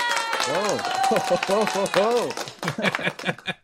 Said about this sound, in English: Yay! The crowd goes wild. I actually have a sound effect for that as well.